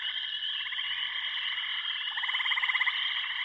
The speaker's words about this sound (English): Yours has crickets, though. Yeah, from when I don't know the answer, it's going to be crickets.